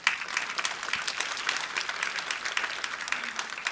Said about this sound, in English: Doesn't God deserve a clap offering?